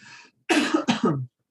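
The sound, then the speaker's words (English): A soft throat-clearing sound is followed by a quick burst of two or three harsh coughs, loud and abrupt, with no talking. “Sorry, I'm just coughing my trauma.”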